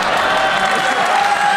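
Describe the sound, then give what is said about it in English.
A roomful of people applauding steadily, the dense clapping forming a continuous wash of sound with a faint murmur of crowd voices underneath. “It's a room full of white people clapping at black shitheads.”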